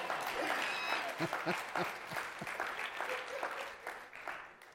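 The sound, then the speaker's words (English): An audience breaks into sustained applause, dense overlapping clapping at a steady, moderately loud level, with a few scattered voices mixed faintly underneath. “Help this lady clap over here.”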